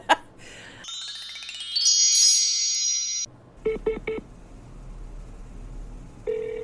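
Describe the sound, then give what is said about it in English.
A phone line connects with rising electronic tones, then a few quick beeps followed by a steady ring tone, clear with no talking, as a call is placed to Stephen Miller. “And we should and shall never forget the time when you got Steve on the phone and told him you were calling from Dem Gay Politics and he hung up.”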